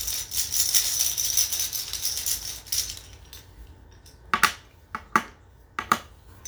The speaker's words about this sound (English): Damn, these just do not shuffle. Yeah. Well, I just hand shuffled them.